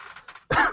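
A single loud, harsh cough bursts out, following a few soft, breathy throat sounds, with no talking.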